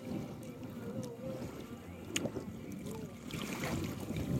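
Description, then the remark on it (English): Water sloshes and splashes steadily around a kayak moving along on open water, with gusty wind buffeting the microphone and a brief sharp knock partway through. “Nice, it's so good to be out on the water again.”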